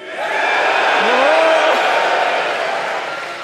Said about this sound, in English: Were y'all booing me? I feel like I'm in Gladiator and you want me to lose.